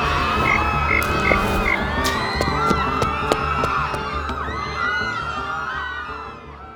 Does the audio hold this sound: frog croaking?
yes